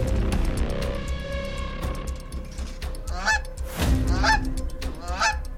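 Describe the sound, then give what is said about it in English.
Canada geese honk repeatedly in loud, overlapping calls, a flock of harsh nasal honks with a low rumbling background throughout. “The Canadian geese came and took his family.”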